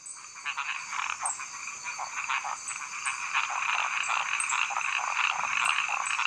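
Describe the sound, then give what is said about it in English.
A dense chorus of frogs: one male frog starts the call and is almost immediately copied by other frogs, calling over one another with rapid repeated croaks and high chirps recurring every second or so, steady and fairly loud throughout with no voices. “One little male will start the call. This is an actual frog the researchers recorded, by the way.”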